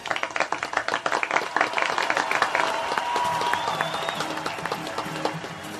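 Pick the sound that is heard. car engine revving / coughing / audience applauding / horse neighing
audience applauding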